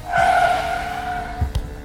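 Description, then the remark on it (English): Tires squeal loudly in a long, sustained screech as a car swerves hard to turn down a street in the dark while fleeing a pursuing vehicle, ending with a short thump and rattle near the end. “Quick, turn down there.”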